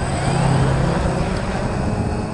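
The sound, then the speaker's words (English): A helicopter drones steadily overhead in the skies of New York, a dense, continuous roar of rotor and engine noise that stays loud and unchanging for a couple of seconds, with no voices. “As helicopters fill the skies”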